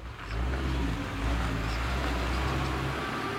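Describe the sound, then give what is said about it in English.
A car engine idles and rolls along slowly through a mountain resort with its windows down, a steady low rumble with a faint hiss of motion on top, holding an even level throughout with no voices. “The windows in the car came down, and I got a big nose full of fresh mountain air.”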